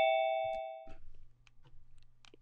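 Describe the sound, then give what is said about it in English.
A ding-dong chime rings out clearly, its bright tone lingering and fading within a second, followed by a low steady hum and a few faint clicks. “I'm gonna turn that ding dong off. I don't like that ding dong.”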